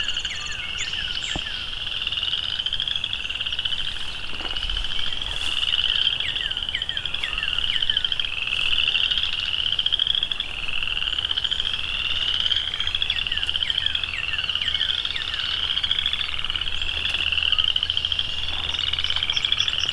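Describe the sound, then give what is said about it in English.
Dense chorus of chorus frogs trilling continuously, overlapping rising calls filling the whole stretch, with a song sparrow singing barely audible beneath the din. “A song sparrow right in front of me, and you can barely hear him because of all of this chorus frog song.”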